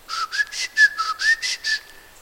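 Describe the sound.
A whistled bird call: a run of about seven quick, rhythmic chirps riding on a steady, mid-high whistled tone, fairly clear and loud, fading out at the end with no talking.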